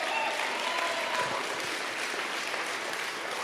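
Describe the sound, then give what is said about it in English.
An audience applauds during a service in a steady, dense wash of clapping that holds at an even loudness for several seconds, with no words spoken. “Come on, turn to that person next to you and say, you should be clapping a little bit more during this service.”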